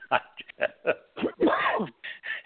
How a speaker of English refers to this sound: I'm sorry, I coughed.